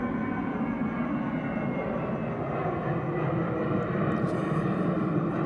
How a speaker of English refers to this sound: Sorry, y'all, so plane literally flying overhead. Okay, we good.